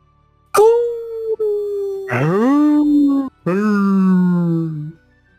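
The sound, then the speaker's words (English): A person's voice imitates a deep, guttural wolf howl in three drawn-out, sliding calls, each swooping up and then holding a long low tone, fairly loud. “Just, I can't howl, but imagine I made a wolf sound that was a little bit deeper than a normal wolf sound.”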